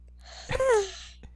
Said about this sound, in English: Yawn first, then talk.